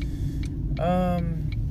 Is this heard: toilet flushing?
no